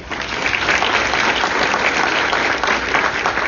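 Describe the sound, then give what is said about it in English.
An audience claps in steady, sustained applause for first-session legislators, a dense wash of many hands that stays loud and even throughout with no voices standing out. “So I really think everybody needs to give them a round of applause for the situation we put them in.”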